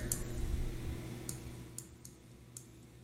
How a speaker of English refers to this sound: I hear a lot of clicking, but not a lot of playing.